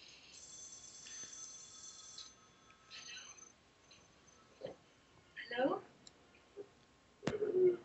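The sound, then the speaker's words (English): A telephone rings with a high, steady trilling tone for about two seconds, fairly faint, followed by scattered clicks, soft thumps and brief muffled voices. “Don't answer the phone.”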